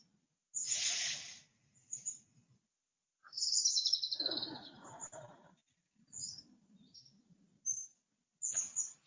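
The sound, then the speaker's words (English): Birds chirp in bright, high bursts outdoors, several short calls and twittering phrases coming in irregular clusters with quiet gaps between, clear, with a soft low rustle underneath. “Feel a little bit of the breeze. Reach out to the birds.”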